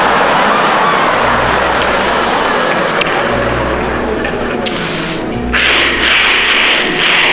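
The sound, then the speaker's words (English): Loud, steady roar of heavy trucks rushing past on a highway, a dense wash of engine rumble and tire hiss that swells and shifts as each rig goes by, with no voices. “Them semis, they just never let up.”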